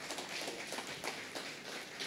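Steady applause from an audience fills the whole stretch, a dense crackle of many hands clapping at once with no voices over it.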